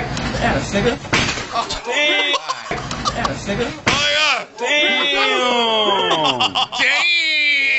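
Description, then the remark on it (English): A hard thud of a man's head striking a glass window as he is knocked out lands amid loud, excited shouting, with another sharp bang moments later and voices crying out over it. “this dude gets knocked out, he gets knocked out into, his head gets stuck in glass, like his head gets knocked into a window to where he's laid out.”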